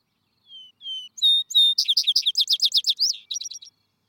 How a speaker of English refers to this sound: The field or vesper sparrow, called also grass finch and bay-winged sparrow, a bird slightly larger than the song sparrow and of a lighter gray color.